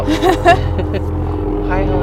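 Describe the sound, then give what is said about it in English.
A helicopter drones steadily overhead, a loud, continuous low rumble with a faint pulsing throb that runs the whole time beneath people talking. “We gotta head out soon, and then this helicopter is really loud.”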